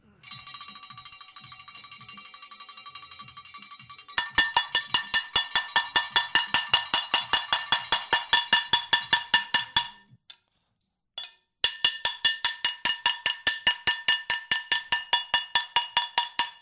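Pots and pans being banged in a pots and pans parade on the Good Morning Amigo radio show on Sirius XM, a fast, steady rhythm of sharp metallic clangs that ring brightly, following a few seconds of sustained ringing, with a brief pause before the banging resumes.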